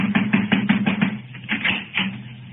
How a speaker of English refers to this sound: I'll need you to knock on the door